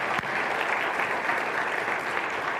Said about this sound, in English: But in light of that, let's take a minute and let's give a big round of applause for all of our high school grads and our post-secondary graduates.